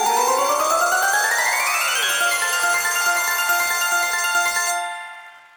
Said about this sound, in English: ding, ding, just a bell. That'd be great.